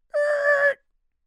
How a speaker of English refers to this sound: I got to learn how to use sound effects because that was a good screech, but I could have come up with a better.